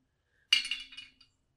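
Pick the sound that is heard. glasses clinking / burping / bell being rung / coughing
glasses clinking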